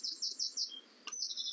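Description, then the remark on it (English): Bright, repeated bird chirps ring out in quick succession along a walking path away from a road, a short series of high notes, then a brief pause and another run of calls over a faint outdoor background. “Very pretty bird noises now as we're getting further away from the road.”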